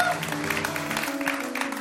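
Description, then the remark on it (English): An audience applauds the band: a steady patter of many hands clapping at moderate volume, with a sustained musical tone holding underneath throughout. “Why don't you give the band a hand? Give the band an applause.”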